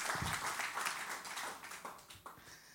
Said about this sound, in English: Give my dad a hand clap, will you? Praise God. Amen.